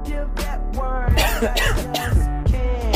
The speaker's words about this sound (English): Is this part of the song, the coughing?